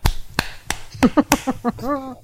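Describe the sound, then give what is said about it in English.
A few sharp, dry hand claps ring out in quick succession, each crisp and short, before a voice starts speaking with a rising, drawn-out tone. “I'm going to give you the clap. I mean, a clap.”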